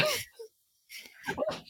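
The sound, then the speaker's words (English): A female black Labrador retriever whimpers and cries in short, whiny bursts, a brief high whine, a pause of silence, then a few more strained, quavering cries. “My black lab is crying.”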